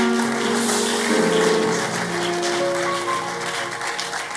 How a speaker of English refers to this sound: You are not clapping enough.